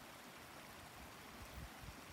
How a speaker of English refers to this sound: You can see the water is going lower and lower, finding the path down the mountain. And here, it's joining up with a bigger river. Well, I don't know if you call that a river. It's flowing under the snow and then down the path.